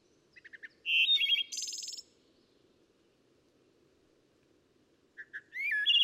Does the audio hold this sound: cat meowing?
no